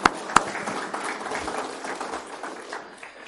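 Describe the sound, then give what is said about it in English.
A short burst of audience applause for a moment of silence: a couple of sharp claps up front, then a steady crackling patter of many hands that slowly thins out, moderately quiet and with no one talking. “But anyway, just can we get another round of applause for silence?”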